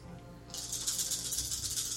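After a brief quiet moment, a handful of dice, rolled for an attack roll with a staff, rattles and clatters steadily for over a second, a bright clicking jumble with no voices.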